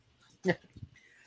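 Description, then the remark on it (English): A single sharp dog bark rings out fairly loud, followed by a brief low rumble and quiet background noise. “Must be a dog outside. My dog's going crazy.”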